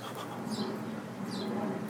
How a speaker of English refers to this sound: That's a chipping sparrow, I think.